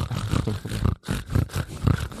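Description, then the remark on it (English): A person imitates a pig with a run of loud, rough snorts and grunts, breaking briefly for a moment before launching into another burst of snuffling, guttural noises. “This okay is a legitimate impression of pigs actually hosting the podcast, just for 30 seconds.”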